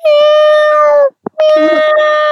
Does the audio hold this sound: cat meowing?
yes